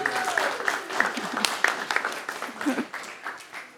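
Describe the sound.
An audience at a morning gathering held at a school breaks into a steady round of applause as a woman comes to the front: dense overlapping claps lasting several seconds at a fairly even loudness, with a few murmured voices mixed in beneath.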